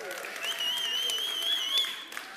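A crowd claps and cheers steadily at the speaker's request, with a dense wash of applause under a shrill held whoop or whistle that rises and wavers throughout.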